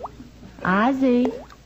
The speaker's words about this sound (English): Hmm. goodness, the faucet in the bathroom's dripping. I'll never fall asleep now.